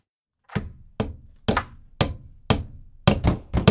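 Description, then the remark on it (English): A hammer pounds wood, boarding up first-floor windows, in a steady series of sharp, heavy blows, about two per second, each thunk ringing briefly before the next; the last strikes come faster and louder. “You lock the front door, and I'll board up the first floor windows.”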